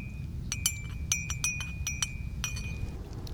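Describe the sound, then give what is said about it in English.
Boiling water pours into a mug to make dandelion coffee from roasted, ground dandelion roots, over a low, steady rush, with a series of bright ceramic clinks and a faint ringing tone. No one speaks. “Let me get the boiling water ready. Put it in my mug, and we can make some dandelion coffee.”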